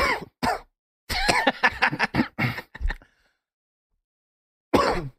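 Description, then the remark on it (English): A person coughs: two quick coughs, then a rapid fit of several harsh coughs in a row, a short silence, and one final cough. “I literally was just coughing.”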